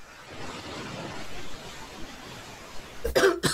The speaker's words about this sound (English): As several of the NPCs begin coughing, having been caught in the poison.